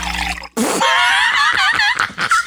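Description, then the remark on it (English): Water is poured into a glass directly in front of a microphone, a steady gurgling stream whose ringing pitch wavers and rises as it fills, following a brief low hum. “How you gonna serve yourself a glass of water directly in front of the microphone?”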